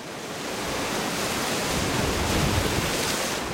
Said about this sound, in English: Winds have begun gusting to 60 miles an hour. People are hauling boats inland and moving their meat drying racks. Shishmaref is bracing for another fall storm.